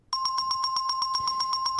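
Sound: bell ringing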